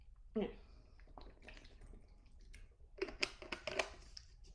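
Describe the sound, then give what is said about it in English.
Wet gulping and swallowing as someone drinks water, a few irregular sips and swallows spread over several seconds with quiet breathing between them. “I need to keep drinking water because I have 2 hours of client calls after this as well.”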